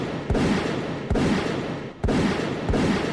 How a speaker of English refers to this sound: What the fuck was that? Was that a gunshot? Yeah, it sounded like one. I think it came from that way.